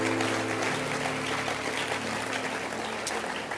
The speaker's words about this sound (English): Clap your hands for them. Clap your hands for them. Keep clapping your hands. Keep clapping your hands. Oh, don't stop clapping.